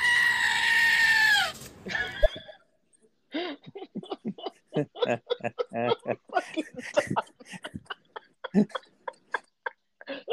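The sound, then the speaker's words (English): A loud, harsh goat scream rings out for about two seconds, its pitch sliding downward, then breaks off as people start talking and chuckling. “See, unfortunately, if you go ahead and you fuck the goat, then the neighbours get alerted, because all that you can do is stand there fucking your goat and all the neighbours hear is...”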